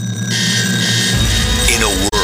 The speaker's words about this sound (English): Your alarm clock goes off too early.